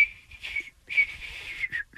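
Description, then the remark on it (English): Someone whistles a tune, a few sustained melodic phrases separated by short breaths, clear and fairly loud with no talking over it. “It's not like whistling.”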